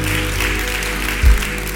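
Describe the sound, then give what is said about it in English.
A church audience applauds steadily to encourage a man, a dense wash of clapping at an even, fairly loud level, with a brief low thump partway through and no voices standing out. “Come on, if you want to clap for him, encourage him.”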